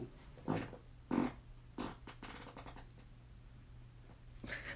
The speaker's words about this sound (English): Sorry. Hopefully y'all heard that. Nice, mean, iced coffee fart with Stokes and a croissant.